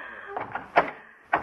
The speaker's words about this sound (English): this door to Mr. Waterbury's office. I can't open it.